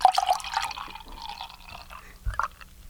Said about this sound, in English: Okay, we are here popping the cork for the first time on the Heavy Metal Hippie Double IPA. Listen to this sound.